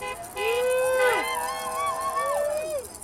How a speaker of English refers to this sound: What you're hearing is a protest from a few Saturdays ago from a group advocating for no on Measure G.